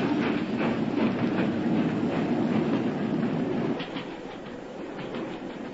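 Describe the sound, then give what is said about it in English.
A moving train on the British railway in a Sherlock Holmes drama rumbles and clatters steadily along the rails, fairly loud, its rhythmic clicking continuing throughout before easing slightly toward the end. No voices are heard. “Stop the train, I say!”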